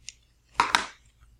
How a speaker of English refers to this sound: And I'm just going to cut a couple more pieces. Don't need much.